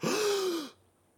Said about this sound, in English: Gasps, yeah.